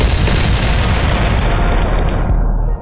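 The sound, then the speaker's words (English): A loud cannon boom, fired for a Tampa Bay Bucs touchdown, that rolls into a dense, sustained rumbling roar lasting a few seconds, with no voices. “Fire the cannon.”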